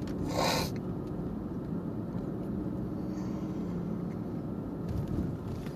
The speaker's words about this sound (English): Sorry about all the sniffing. I got a little bit of a cold.